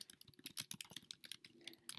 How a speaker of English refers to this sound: Also, my computer just went to sleep, so I'm gonna log back in with typing.